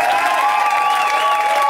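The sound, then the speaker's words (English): A crowd at a show applauds loudly and steadily after a comedian's set, with cheers and whoops rising over a dense wash of clapping that fills the whole short stretch. “Hannah Boone, everybody, let her hear it!”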